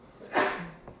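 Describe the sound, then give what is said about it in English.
A single quick sneeze: a sharp, breathy burst that fades into a brief low voiced trailing sound, with nothing else around it and no talking. “Bless you, ….”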